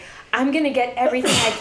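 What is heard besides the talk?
sneeze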